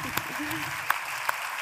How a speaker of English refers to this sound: Yeah, I'm going to clap for that.